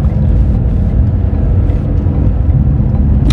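A steady, loud low-frequency rumble fills the interior of a moving car on a cold day of minus 22 degrees outside, an unbroken engine and road drone with no voices and no distinct events.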